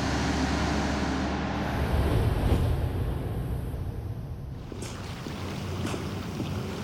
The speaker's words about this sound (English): The revving of Dexter's boat engine drowns out the memory. His boat, aptly named Slice of Life, speeds back to shore and away from his past.